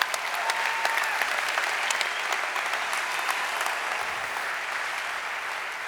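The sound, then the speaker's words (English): A university audience claps for the Lord, a steady round of applause for several seconds, a dense crackling wash of many hands at an even, fairly loud level with no voices over it. “Can we give the Lord a clap for that, please?”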